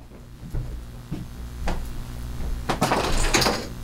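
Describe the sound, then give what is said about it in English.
A few soft knocks, then a sudden loud bang and brief clatter as a large metal spoon drops in a room and hits a hard surface, ending up underneath a beach chair, ringing briefly before fading. No one speaks. “we heard what was a loud bang in the room with us. And on this audio clip, you can hear an object fall”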